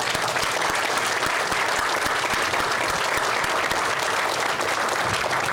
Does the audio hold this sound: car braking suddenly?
no